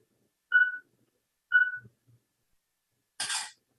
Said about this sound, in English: So you heard it beep twice, made a shutter noise, and now it's processing that information.